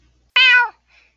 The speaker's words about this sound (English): Right now, we have a cat.